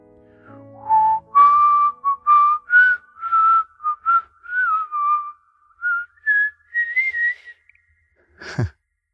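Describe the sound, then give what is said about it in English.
A person whistles a flowing song melody, a string of clear rising and falling notes in steady phrases, ending with a short, sharp breathy burst. “I'm willing to bet that some of you know the lyrics, or can at least hum or whistle the entire tune.”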